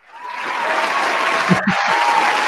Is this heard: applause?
yes